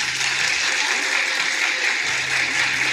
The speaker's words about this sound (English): Clap if you're participating in Galentine's Day.